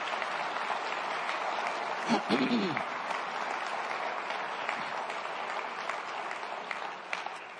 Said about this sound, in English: They never asked for that applause. They never asked for it. And that, more than anything, shows me where their hearts are. And they don't do this for applause.